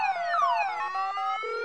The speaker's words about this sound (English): Cut off your stupid car alarm!